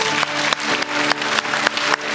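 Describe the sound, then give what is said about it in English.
An audience claps together as a clap offering to the Lord, in a dense, steady burst of applause, loud and continuous, with no voices speaking over it. “Can we just give a clap offering to the Lord?”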